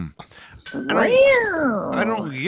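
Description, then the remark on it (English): A person voices a drawn-out, wavering cat meow, rising then falling in pitch, loud, following a few brief clicks at the start. “I think I'd rather have all of them like meow, you know, like do some wild fucking growl or something.”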